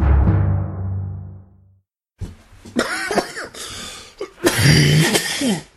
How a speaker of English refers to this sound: God damn it. I'm coughing. I can't fucking quit now. Ugh, I was trying to drink water in between, but it was becoming too much.